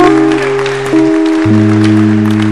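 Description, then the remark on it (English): A church audience stands and claps for Jesus over sustained organ or keyboard chords that shift pitch a couple of times, with the clapping forming a dense, continuous patter at a fairly loud level. “Put your hands together and stand to your feet.”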